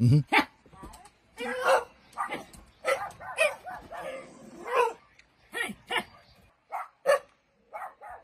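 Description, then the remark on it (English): A man in Odd, West Virginia imitates a dog, letting out a run of short, loud, sharp barks in irregular bursts, with a couple of real dogs barking now and then in the background. “Now, there is a dog in the background. There's a couple of them. But for the most part, that's the guy barking.”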